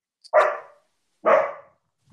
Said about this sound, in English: Dogs, they're attacking.